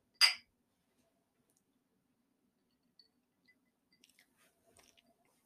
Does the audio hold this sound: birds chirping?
no